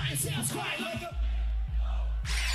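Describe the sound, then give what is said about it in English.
A loud concert crowd yells and cheers for about a second, voices whooping together, before deep booming bass hits and music take over, with crowd noise continuing underneath. “Listen. Listen to the crowd.”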